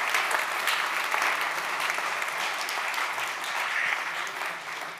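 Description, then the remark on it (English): An audience applauds open source contributors who are not present, steadily for about five seconds, a dense, even patter of many hands clapping at constant loudness with no voices standing out. “But even though they're not here, I think they can hear us when we give them a little round of applause.”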